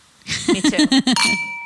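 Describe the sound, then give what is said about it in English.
A quick run of about five bright clinks of glasses tapped together in a toast, ending in a thin sustained ring. Fairly loud, with no talking. “I'm going to cheers that.”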